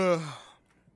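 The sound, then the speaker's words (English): A single breathy yawn from one person at almost 3 a.m., voiced and sliding downward in pitch before trailing off into quiet after about half a second. “I'm gonna just keep yawning because it is almost 3 a.m.”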